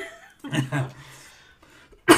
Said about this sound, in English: Jeez, I got a cough. Maybe I got corona.